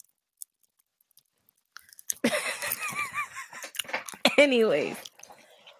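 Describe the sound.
Close-up wet chewing of popping-candy fireworks Oreo cookies with scattered tiny crackling pops, right at the microphone, while a voice mumbles and talks through a full mouth.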